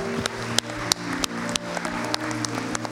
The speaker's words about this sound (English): Can you give him a hand clap of praise in here?